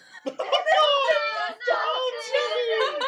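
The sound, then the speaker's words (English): A voice imitates a small child crying and screaming as if on fire, wailing in two long, strained bursts with a brief break between them, loud, with no other sounds around it. “You hear like, a small child like a... crying and screaming because they are on fire, and it's Timmy.”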